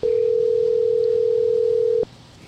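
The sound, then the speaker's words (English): A telephone ringing tone on a call to a mobile phone plays as one steady, clear electronic burst for about two seconds, then cuts off as the call is forwarded to an automatic voice message, leaving a faint hiss on the line. “Your call has been forwarded to an automatic voice message.”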